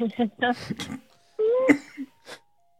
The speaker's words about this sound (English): Oh my God, you made me almost cough up.